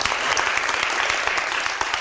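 An audience applauds steadily, a dense wash of many hands clapping at a fairly loud, even level throughout, with no voices breaking through.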